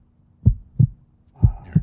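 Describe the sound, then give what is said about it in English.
A deep heartbeat sound effect thumps in two lub-dub pairs, low and booming, each double pulse spaced about a second apart, with faint hiss filling the gaps. “There it is. I was waiting on the heartbeat.”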